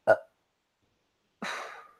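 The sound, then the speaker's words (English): A short throaty gulp, a second of silence, then a longer rasping burp that trails off, fairly loud, with no talking. “I'm gonna burp.”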